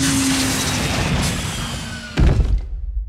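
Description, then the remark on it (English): A rocket ship landing on the moon: a steady, loud hiss-and-rumble of engine noise runs for about two seconds, then a heavy low thump as it touches down, followed by a fading rumble. “Oh, I think we're slowing down. Are we about to land? I think we are.”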